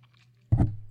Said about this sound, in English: and you do what's called that chew. We just kind of roll it around, because what you're trying to do is you're coating your entire palate.